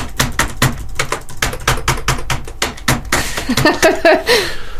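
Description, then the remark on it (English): Rapid, steady clicks of fingers typing on a computer keyboard fill the first few seconds, fairly loud, before a person starts talking while the tapping fades. “Why is it when you type one letter wrong on the keyboard, you delete the whole word?”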